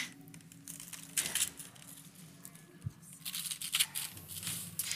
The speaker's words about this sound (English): Quick, tear the paper off for Daddy.